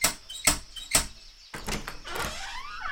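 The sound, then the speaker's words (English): Three quick, sharp knocks, then Christopher Robin's green door in the forest creaks and scrapes as it opens, with a rising squeak near the end. Clear, with no voices. “The first person he thought of was his friend, Christopher Robin, who lived behind a green door in another part of the forest.”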